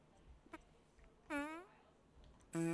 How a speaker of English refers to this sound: Little fart, long fart.